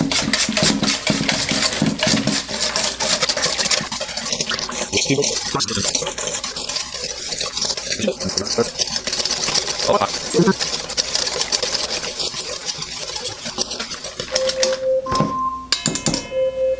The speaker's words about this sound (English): All right, let me get the whisk here. We're gonna whisk this up and hopefully make some delicious pudding. Maybe not so delicious, we'll see.